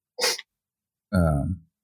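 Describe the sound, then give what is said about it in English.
A short, sharp sniff of breath through the nose from a person with the flu, followed after a pause by a longer voiced, throaty nasal sound, with silence around both. “I'm sniffing.”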